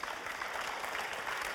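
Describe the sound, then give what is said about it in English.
An audience at a prayer gathering claps five times together, in a dense, steady burst of overlapping hand claps, fairly loud and even throughout, with no talking over it. “so either the first time or the second time, change, improvement, or healing, and you're the person who prayed or was being prayed for, would you go ahead and clap 5 times again?”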